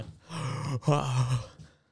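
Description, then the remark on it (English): A voice performs exaggerated heavy breathing: two long, loud, groaning breaths in a row, the second slightly stronger, then it fades out. “Like, I do the train spotting heavy breathing.”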